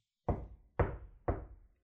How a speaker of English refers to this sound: "Oh, it doesn't matter," she said, and she went and banged on the door of the mausoleum.